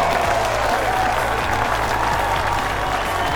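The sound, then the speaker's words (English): The Werner Park ballpark crowd gives a standing ovation as Alcides Escobar rounds the bases after a solo home run, with loud, steady applause and cheering that stays at an even, dense roar throughout. “He rounds the bases and gets a standing ovation from this Werner Park crowd.”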